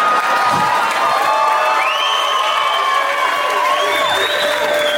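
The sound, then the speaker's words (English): A crowd cheers loudly and steadily for about five seconds, a dense wash of shouts and whoops with a few high voices rising above, no clapping standing out. “He cheers that. He's like, yeah, that's a good one.”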